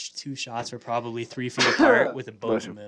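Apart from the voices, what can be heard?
sneeze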